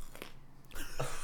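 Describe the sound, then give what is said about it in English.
Wet crunching as someone bites into a crisp red pepper and chews, a sharp bite followed by a louder burst of crackly, moist chomping with no one speaking. “The crunch sound I do like, actually, but...”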